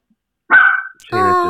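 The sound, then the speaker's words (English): A dog barks twice, a sharp yelp followed by a longer, whining bark, both loud and clear with no talking over them. “I miss your doggy.”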